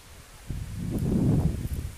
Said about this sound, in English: Sorry, beloveds, this is really windy.